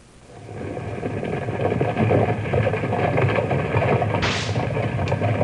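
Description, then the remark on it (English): A team of 12 mules hauls two large wagons full of a special sand used to make glass, in a steady, loud rolling rumble that swells in after a quiet start, with a brief hissing burst near the end and no talking. “There go 12 mules pulling two large wagons full of a special sand used by the Mountain Refining Company to make a particular kind of glass.”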